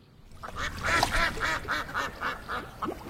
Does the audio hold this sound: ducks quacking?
yes